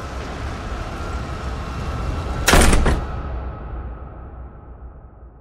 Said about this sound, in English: At last, her door was struck by the butt end of a musket.